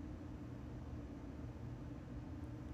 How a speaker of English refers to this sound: Yeah, it's like my AC like just turned on and it's really loud. Uh-oh. Can you hear it?